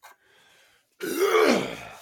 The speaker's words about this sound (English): Let's be clear. Clear my throat. You're getting the phlegm out of here.